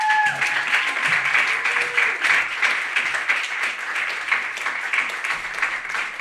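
An audience applauds the open mic readers at the close of an evening, many hands clapping in a dense, continuous patter at a fairly loud, even level, with a brief tonal whistle or squeak at the start.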